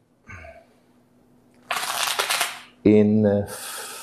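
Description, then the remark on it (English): A deck of playing cards is shuffled in two crisp, rustling bursts, the first lasting about a second, with a brief voiced sound in between before the second riffle. “You can shuffle again.”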